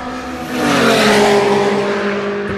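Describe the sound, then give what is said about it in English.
A Datsun 1600 race car with a rotary engine screams past at high revs, a loud buzzing roar with harmonic tones that rises sharply, holds for a couple of seconds, then begins to fade slightly. “Oh, now that was a Datsun 1600 with a rotor in it.”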